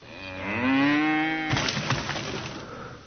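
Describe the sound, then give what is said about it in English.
A single long, low cow moo sounds, then cuts off abruptly into a loud burst of crashing, crackling noise, an exploding cow, that fades out over the next second or so. “Gateway boxes look like they're cows.”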